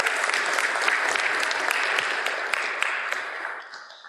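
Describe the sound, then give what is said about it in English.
An audience applauds steadily for a family who came up on stage, a dense wash of many hands clapping at once, holding fairly loud for about three seconds before gradually tapering off near the end. “Folks, please give the family a warm round of applause and thank you for coming up on stage.”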